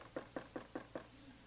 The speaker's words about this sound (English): And somebody come knock on the door.